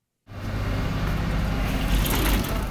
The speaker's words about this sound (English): On a sunny day in downtown Winston-Salem, the morning rush at the city's main bus terminal is over. Passengers form short lines, drivers meander in and out with partially filled cabins, the rhythm of the place like a slow shuffle.